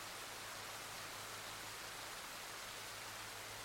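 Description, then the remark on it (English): Steady, even rainfall hisses continuously throughout, a dense wash of soft patter with no distinct drops, thunder, or voices; quiet and unchanging from start to finish. “Beautiful sound of the rain.”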